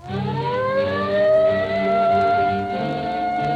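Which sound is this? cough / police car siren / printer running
police car siren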